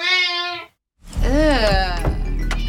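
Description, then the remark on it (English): A cat meows twice: first a steady, drawn-out cry, then after a short pause a louder, wavering meow over low background rumble and murmuring. “There go that damn cat again.”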